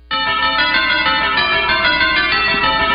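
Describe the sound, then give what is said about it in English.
A bright, sustained bell chime from a football broadcast theme rings out loudly with rich overlapping harmonics, holding steady for a few seconds without fading, with no voices over it. “There's oh, the bell. I like that.”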